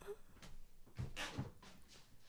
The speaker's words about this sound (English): She's gone to the front door. She's expecting mail. The package has arrived. I think it's from ASOS.